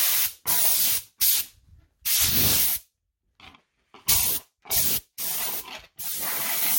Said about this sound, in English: What I do now is I take air, pressured air, and actually dust it off a little bit.